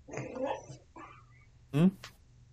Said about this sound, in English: It was my dog barking. Sorry if you heard it in the audio.